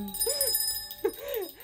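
Bells ringing with sustained, shimmering tones that waver up and down in pitch, struck twice about a second apart, with no one talking.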